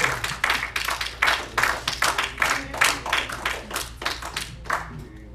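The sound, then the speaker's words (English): An audience claps their hands together in a dense, steady burst of many overlapping claps, a bright crackling applause that keeps an even pulse for several seconds without voices. “Give the Lord a hand clap as he comes.”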